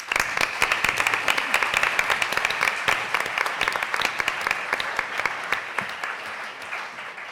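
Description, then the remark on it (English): Sustained applause from an audience for a group of speakers, dense overlapping clapping that stays steady and fairly loud for several seconds before easing slightly toward the end, with no voices standing out. “First, give a round of applause to all the speakers.”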